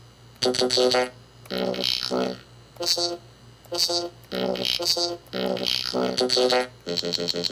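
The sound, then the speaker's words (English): A series of short, buzzy computery voice samples from a 1010 Black Box synthesizer, played back as WAV files one after another in quick succession as keys are clicked, over a steady low hum, each chunk sounding robotic and formant-shifted with strong harmonic stacks. “It's kind of this computery voice samples that I got off of a synthesizer of mine, actually, the 1010 Black Box.”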